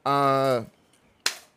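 A held vocal tone breaks off, and after a short pause comes one sharp, crisp hand clap that rings briefly and fades.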